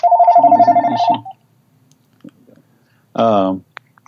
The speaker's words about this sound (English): I got to turn this off. Sorry. Phone problem here.